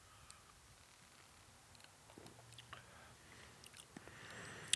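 A quiet sip of beer: soft wet slurping and small mouth clicks, with a faint swallow toward the end and no talking.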